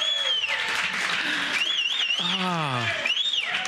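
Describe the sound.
A football stadium crowd cheers in a loud, steady roar after a completed pass to Sterling Shepard, with high whistles piercing through and one voice letting out a long, falling shout partway through.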